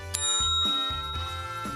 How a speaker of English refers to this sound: I have a bell. It says ring for a beer.